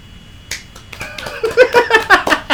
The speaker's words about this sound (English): Golf clap. Pretty good. Golf clap.